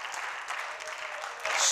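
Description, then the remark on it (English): An audience at a morning church service claps hands in a dense, steady wash of applause, with scattered voices and shouts mixed in; the clapping swells louder toward the end. “Come on, somebody clap your hands and shout this morning.”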